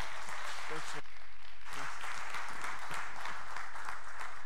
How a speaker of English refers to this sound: Can we give him like an applause here? This is so great.